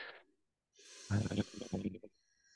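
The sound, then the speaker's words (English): A single loud exhaling groan made to release tension and self-regulate: a breathy rush of air swells into a strained, voiced groan lasting about a second before trailing off into quiet breath. “And we'll literally like groan in public if I need to.”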